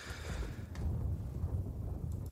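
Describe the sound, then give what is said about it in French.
A deep, rolling rumble of thunder that swells quickly and sustains for a couple of seconds, heavy in the low end with some faint hiss on top, and no voices. “Avez-vous entendu? Il y avait un coup de tonnerre.”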